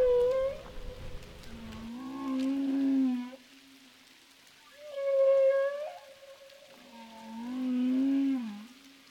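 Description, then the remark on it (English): Humpback whale song underwater at Roca Partida: long, drawn-out tonal calls alternating between a higher moaning note and lower groaning swoops, each lasting a couple of seconds with brief pauses, no voices present. “Humpback Whales of Roca Partida”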